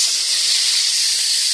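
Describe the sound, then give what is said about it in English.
An espresso machine's steam wand hisses while an order of several lattes is being made, in a steady, loud, high-pitched rush of air that holds constant without a break. No voices can be heard. “As luck would have it, as you're straining to hear even more, someone ordered a bunch of lattes and all you can hear is the...”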